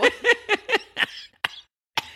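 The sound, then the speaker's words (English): A coughing fit: about five quick, harsh coughs in rapid succession, then two more single coughs after short pauses, with no talking. “I can't feel like you're coughing over here.”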